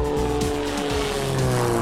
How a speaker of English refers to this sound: With that, we're off in Bill's pride and joy, a lake amphibian, literally a flying boat.